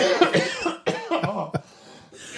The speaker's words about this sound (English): You're making me cough.